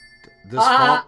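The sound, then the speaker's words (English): A phone rings with a single loud, warbling, bleat-like tone that swells and holds for about half a second, preceded by faint steady high beeps. “I'm getting the fucking phone this time.”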